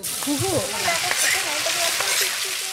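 Vegetables sizzle and crackle steadily in a hot wok-type pan set into a hole in a clay mound over a fire sunk into the ground, a loud, continuous frying hiss, with muffled voices talking faintly underneath.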